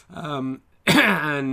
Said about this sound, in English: Oh, look, see that little cough? Don't worry, you can't catch this down the line.